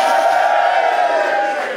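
An audience cheers loudly and steadily when asked to cheer in a straw poll, a dense wash of shouting and whooping voices that holds at full volume for under two seconds.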